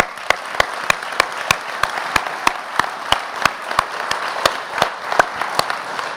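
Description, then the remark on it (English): An audience applauds steadily, a dense wash of clapping with sharp, evenly spaced claps cutting through at a quick regular beat, loud and sustained throughout with no talking. “And if you're a single mom, I'd just like to stand up and cheer you and say thank you for being here and bringing your children.”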